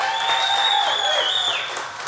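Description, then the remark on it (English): A live audience claps steadily for about two seconds for surfer Bethany Hamilton, a dense, even wash of many hands. A sustained high whistle-like tone runs through it, and no one speaks. “Round of applause for Bethany.”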